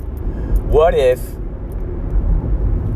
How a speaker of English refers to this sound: the car that I'm driving in at the moment is bumpy or not